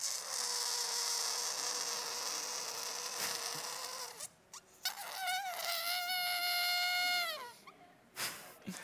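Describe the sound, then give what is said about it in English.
A long, buzzy raspberry blown with the lips, a fart noise made by mouth, holding a steady pitch and then wobbling before it cuts off. No one speaks. “I just had to make a fart noise, you knew I did.”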